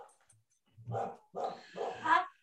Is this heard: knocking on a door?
no